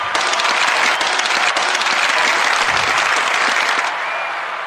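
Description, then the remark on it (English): A crowd bursts into sustained, loud applause with scattered cheers and whoops, a dense wash of clapping that holds steady for several seconds before easing slightly at the end. “Everybody make some motherfucking noise.”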